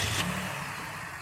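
A car engine revs briefly, a loud low throbbing roar with a rising whine that settles after about a second, with no voices.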